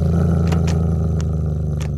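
A female cat named Emmy growls in a restrained, steady, low, throaty rumble that holds unbroken for about two seconds, with a few brief breathy crackles rising over it. No one speaks.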